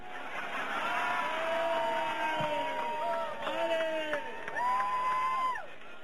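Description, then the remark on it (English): A large crowd cheers and shouts without a break for about six seconds, many voices overlapping in loud, rising and falling whoops that swell slightly toward the end before cutting off. “And, but you were, the main thing is you were cheering then, we're cheering now, and again, I don't know what else to say.”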